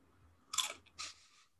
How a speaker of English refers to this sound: I'm also going to eat a Dorito, so sorry.